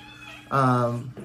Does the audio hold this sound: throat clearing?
no